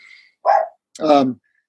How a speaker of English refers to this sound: I forgot my dog might join us on the call here.